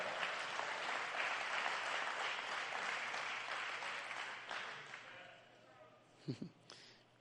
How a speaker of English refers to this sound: Pardon me if this is a little brash, but you didn't clap like you're going to clap in due season. You didn't rejoice over that word that I just said like you will rejoice when it happens.